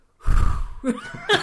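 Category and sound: vocal imitation, voice imitating heavy breathing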